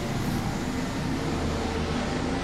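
A helicopter flies by over a residential neighborhood, heard as a loud, steady low rumble with a broad whooshing roar that holds at an even level throughout, with no one talking.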